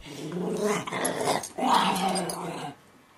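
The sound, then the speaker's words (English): A dog named Frankie growls playfully while wrestling with another dog, Memphis, in two sustained, rumbling bursts with a brief pause between them, loud and throaty, then fades out. “If this was happy Frankie, try to imagine mad Frankie.”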